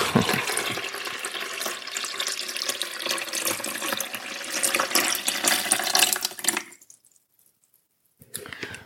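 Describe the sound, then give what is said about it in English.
Water is poured into the reservoir of a coffee maker in a broad, splashing rush for about seven seconds, then stops abruptly; after a short silence a brief clatter follows. “So what you want to do now is pour the water into the reservoir in the coffee pot.”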